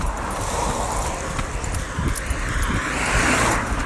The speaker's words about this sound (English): the car passes with a smile and a wave